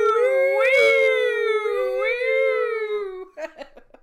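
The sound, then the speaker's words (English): A person imitates a siren with a loud, sustained high wail that rises and falls in pitch for about three seconds, then breaks into a few short choppy vocal bursts. “Do the siren sound. Wee!”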